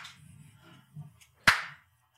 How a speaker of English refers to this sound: What is that clapping shit for?